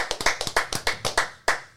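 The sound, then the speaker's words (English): A short burst of applause for a woman celebrating six years of continuous sobriety: about a dozen sharp, crisp hand claps in a quick, slightly uneven rhythm, fairly loud and with no voices, slowing toward the end. “And so I thought we should give her absolutely a round of applause.”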